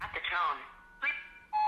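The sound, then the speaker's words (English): A recorded voicemail greeting starts, then is cut off by a short keypad tone from a phone keyboard shortcut that skips to the beep. A steady electronic voicemail beep follows, clear, and runs to the end. “So it turns out there's a keyboard shortcut that lets you jump directly to the beep like this.”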